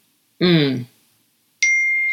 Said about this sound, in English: Sorry, is that my phone or yours? No, it's not mine. Okay, it's me.